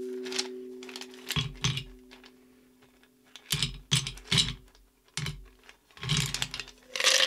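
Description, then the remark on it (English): Ice cubes drop into a glass for a drink of gin and champagne in several irregular bursts of sharp, bright clinks and clatters, some loud, separated by short pauses, over a faint steady low hum. No one speaks. “Now, I'm gonna throw some ice in the glass without knocking over the beautiful rim.”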